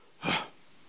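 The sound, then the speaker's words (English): A single sharp, breathy snort, a quick forceful blast of air through the nose, brief, with quiet before and after and no talking. “That word here, snort, that's what that means. It means to gasp. It means to blow.”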